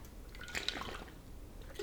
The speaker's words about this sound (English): Okay, so coffee sipped and drank. I'm going to keep charging along.